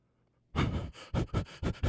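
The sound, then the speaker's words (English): A person imitates a little dog panting as it is put into its room: after a moment of silence, one longer breathy huff is followed by four quick, loud, evenly spaced pants. No words are spoken. “What the hell kind of noise does the dog make? A bark?”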